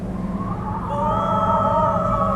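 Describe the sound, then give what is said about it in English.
An eerie, hissing gust of wind swells after a quieter start, its broad rushing noise carrying wavering, howl-like whistling tones that slide and hold for a couple of seconds. “As he closed the gate to leave Auntie's house, that strange gust of wind returned, but this time, it seemed to hiss and speak his name.”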